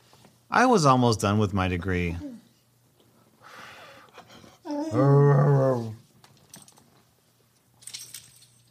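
A dog called Pooch growls and whimpers in two drawn-out, tonal bursts separated by a quiet stretch with soft breathing and faint rustling, ending with a few small scuffs.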